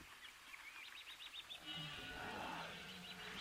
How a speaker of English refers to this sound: Just the sounds of the jungle and the roar of the waterfall.